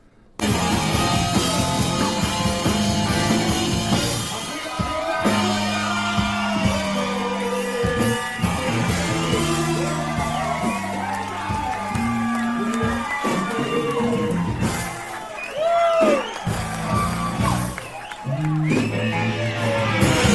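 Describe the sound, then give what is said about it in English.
A dense, loud crowd roars continuously, with whoops and rising yells cutting through the din and a steady low droning tone underneath, sustained for the whole stretch. “Yeah, I'm going to skip ahead a little bit more because where they show the crowd and they're kind of tearing it up here.”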